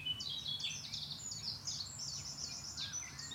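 Garden warblers sing a rapid, continuous, bubbling warble, outsinging nightingales, with other birdsong tangled in and a steady low rumble of building traffic underneath.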